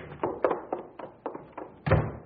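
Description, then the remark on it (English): A door being opened amid a rapid series of dull wooden thunks and clatters, ending in one heavier bang. No voices. “Open the door.”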